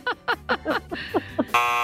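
A loud, harsh game-show buzzer blares for a short moment at the end, after a run of quick, choppy vocal bursts.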